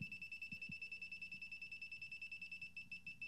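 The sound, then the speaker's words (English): Rapid, evenly spaced electronic beeps from an electronic level set on a desk, in a high, steady pitch, pulsing continuously about eight per second, fairly clear, with faint low knocks and handling noise underneath. “You can hear that fast beep going on.”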